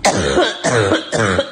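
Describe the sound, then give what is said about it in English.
Three loud, harsh coughs in quick succession, each a sharp burst trailing into a rough, throaty rasp, with no talking around them. “Some of my friends are pretty upset with me for sharing the coughing video without warning.”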